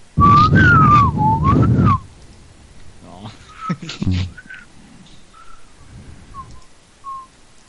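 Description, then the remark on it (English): A person whistles loud, sustained tones imitating telephone dial codes into a payphone, the pitch wavering for about two seconds, followed by several short, fainter whistled notes separated by pauses and some background noise. “He's whistling launch codes into the payphone.”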